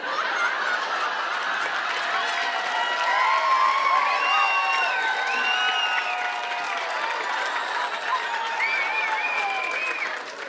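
An audience claps steadily and loudly for about ten seconds, the dense patter mixed with scattered whoops and high whistles before it starts to thin at the very end.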